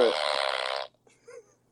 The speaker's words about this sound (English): I have a fart one on here.